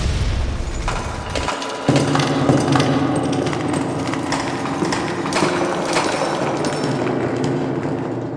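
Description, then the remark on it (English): A huge explosion opens with a deep, loud rumble, then a dense, continuous clatter of debris raining down, full of sharp cracks and crackling impacts for several seconds. “There's a huge explosion and debris rains down.”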